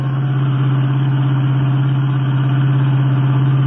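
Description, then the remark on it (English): A car engine drones loudly during a car chase, holding a steady, even hum with a low rumbling pitch throughout, as if cruising at speed. No voices are heard. “that wine-colored Royal Coupe ahead passed us? Hey, that's the car that was stolen from us. It's not getting away from us again.”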